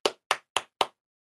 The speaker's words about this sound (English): never starts clapping.